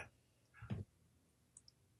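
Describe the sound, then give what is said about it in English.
A key on a huge mechanical keyboard gives one loud clack, then a couple of faint, quick ticks follow amid quiet with no talking. “You'd know it because I have this huge mechanical keyboard.”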